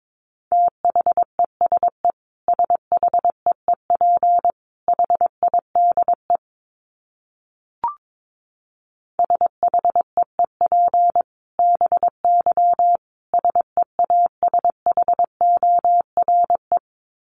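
Morse code at a brisk 22 words per minute: a steady mid-pitched tone keyed in rapid dots and dashes, broken by a pause with a single click, then resuming. No voices.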